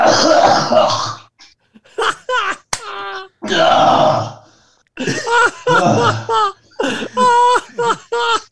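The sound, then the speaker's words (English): Loud retching and coughing: two harsh, raspy heaves, each followed by strained gasping, groaning vocal sounds in short bursts, from a man gagging after throwing up milk he drank in 15 minutes for a challenge. “I drank it in 15 minutes. But threw this shit up.”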